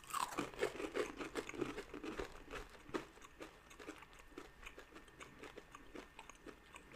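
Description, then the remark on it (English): Chewing of roasted garlic beef jerky, with steady moist, crunchy bites repeating for several seconds, loudest at the start and easing slightly, with no talking. “Okay, let's go for the roasted garlic.”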